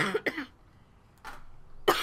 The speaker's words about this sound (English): Sorry. I'm still not over my cough 100%.